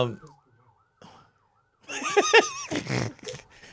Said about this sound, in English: the alarm went off.